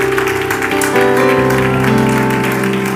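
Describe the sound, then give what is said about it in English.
An audience claps to the Lord in thanks, steadily in a dense, continuous wash of applause, with sustained keyboard or organ chords ringing underneath throughout. “And would you just clap to the Lord right now and just thank him for his wonderful presence.”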